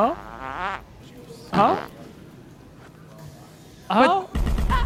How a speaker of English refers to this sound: This is him farting at Walmart, a video he put out yesterday and already has 58,000 views.